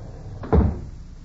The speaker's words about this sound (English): Suddenly, the front door swings open. A man enters.